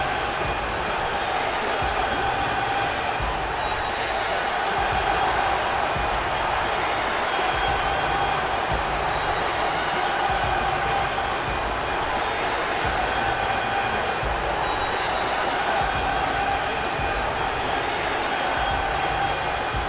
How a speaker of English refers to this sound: John Cena coming out here to a mixed reaction here on the Tim Zabriskie Show.